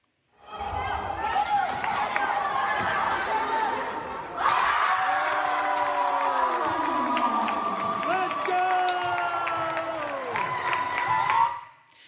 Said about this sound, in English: I'm that dad, I'm not the coach, but I'm that dad in the stands who freaks out when something good happens and I yell so loud. In fact, here is an example from this last season.